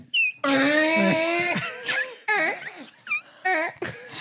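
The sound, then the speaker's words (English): A velociraptor call: a long, shrill, wavering wail followed by several shorter rising and falling shrieks and yelps, loud and harmonic, with brief gaps between cries. “It's a velociraptor.”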